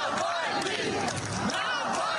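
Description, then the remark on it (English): A large crowd outside the funeral service of Russian opposition leader Alexei Navalny, at a church near Moscow, chants his name together in loud, unison voices, a dense roar in a rhythmic, rising shout. “Outside his funeral service, crowds chanted his name.”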